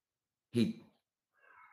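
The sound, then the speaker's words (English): A cat vocalizes twice: a short, rough burst followed after a pause by a higher, drawn-out meow-like cry. No one speaks. “All right, Cat, we hear you.”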